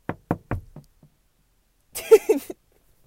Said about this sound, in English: but my God, my sister's coming up to the car. She's gonna bang on the window.